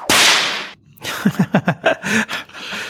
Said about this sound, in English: That sounded like a whip. I don't want to know any more about that.